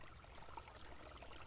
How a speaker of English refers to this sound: The water at the Jordan rippled along, flowing past rocks and over roots.